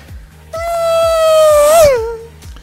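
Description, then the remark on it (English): A voice imitates a Formula 1 racing car for the video game Forza Horizon 3 with one long, buzzy, nasal whine that holds steady, swells, then bends up and drops away, over a faint steady low thumping beat. “Hang on, you did the F1 sound.”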